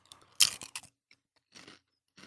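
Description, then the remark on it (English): Crunchy chewing on potato chips: a loud cluster of crisp bites at the start, then a few softer, brittle crunches spaced apart after pauses. No one speaks. “I have one more here. I'm just going to finish this.”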